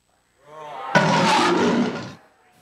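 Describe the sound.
A crowd of voices roars together in imitation of a lion, practising for a telling of the Bible story of Daniel, swelling from scattered calls into a loud, sustained group roar that lasts over a second before trailing off.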